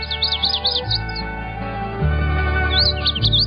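A male magnolia warbler's song: a quick series of high, sweet whistled notes, then a pause and a second similar phrase, heard over a steady low hum.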